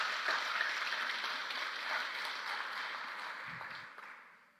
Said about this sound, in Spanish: Dale un aplauso fuerte al Señor en este día.